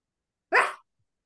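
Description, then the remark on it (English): A person voices one short, gruff bark in imitation of a dog, used as a buzzer in a quiz game. It is fairly loud, surrounded by silence. “I can bark.”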